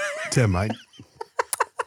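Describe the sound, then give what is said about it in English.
A voice imitates loud, heavy, drawn-out drunken breathing with a groaning tone, followed by several short bursts of snickering laughter. “So when that happens to me and I'm drunk, I start to breathe out loud so I can make sure that I'm breathing right.”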